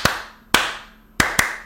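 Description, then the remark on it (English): Four sharp hand claps in a deliberate rhythm: two evenly spaced claps, then a quicker pair close together, each crisp and loud with a short ringing tail. No talking. The claps imitate how the North Carolina team clapped as they walked out of their locker room in a single file line. “They walked out of their locker room in a straight line, in a single file line, and they clapped like this.”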